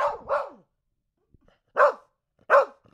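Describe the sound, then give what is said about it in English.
A dog, having just finished howling, lets out a series of short, breathy, weak barking sounds, two quick ones close together, then a pause and two more, with no talking. “I love when he's like letting the steam out after he's done howling and he just goes.”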